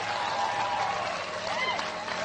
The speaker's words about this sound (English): Get old man a round of applause.